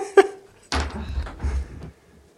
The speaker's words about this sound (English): Hold on. I have to pause. I will be right back. I have somebody knocking at my door.